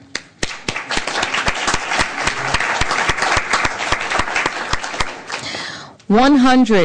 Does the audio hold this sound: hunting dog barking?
no